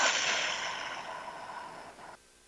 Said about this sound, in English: So let's take a moment as we lean in to breathe. Take a deep breath in through the nose, out through the mouth like through a straw.